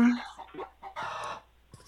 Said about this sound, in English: I'm in a hotel room, but I do have a live chicken here.